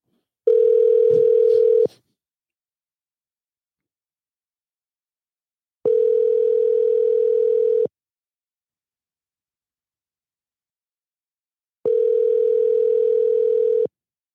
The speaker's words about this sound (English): I feel like I'm showing off when I do this. Listen. Like when you guys hear that, I'm like, yeah, I'm big time. You guys hear my phone? Shit's real.